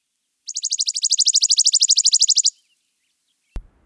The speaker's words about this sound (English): According to Wikipedia, most New World warblers don't actually warble. Instead, some of them trill, which sounds a lot like this chipping sparrow.